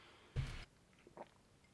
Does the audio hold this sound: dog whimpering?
no